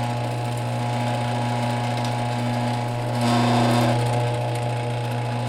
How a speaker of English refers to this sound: he fixed his garage door opener so superbly that the audio he provided me of it is, you can't even hear it